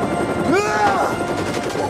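In a movie scene, a bag of money thrown into spinning helicopter blades strikes them with a rapid, rattling burst of chopping impacts, loud and noisy, while a voice lets out a rising exclamation over it.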